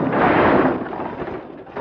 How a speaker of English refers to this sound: Back at the stage, Artie clumsily drops an armload of props on a table.